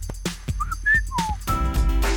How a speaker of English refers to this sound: I'm a whistler. I don't really sing because I don't retain the words.